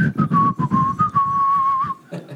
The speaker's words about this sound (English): Cancel the free giveaway for guessing what whistle tune that is.